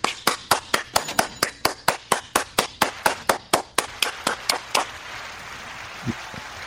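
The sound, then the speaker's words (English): Steady, even clapping, roughly eighteen sharp claps in quick regular rhythm, stops after about five seconds, leaving faint hiss and a couple of soft low thumps. No cheering voices are evident. “Applause are a little low, but people are cheering.”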